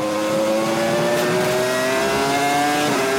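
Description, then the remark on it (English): A Formula 1 car engine screams almost flat out into turn one and carries the speed into turn two, its high whine climbing steadily in pitch, loud, continuous throughout with no voices. “He's almost flat out into turn one, carrying the speed into two.”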